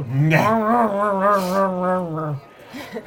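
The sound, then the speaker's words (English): A person imitates a dog growling as someone comes near to clean it, with one sustained, wavering vocal growl lasting about two seconds, fairly loud, then a few soft breathy sounds. “And the dog, when you come near, having seen other people get clean, is like...”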